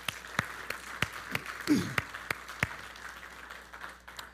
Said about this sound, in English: So let's honor our mothers this morning, our mothers who are present, and our own mothers, and even of our mothers in heaven. We're going to honor our mothers with applause right now. Thank you, moms.